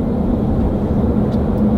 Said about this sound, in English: Is this car hybrid?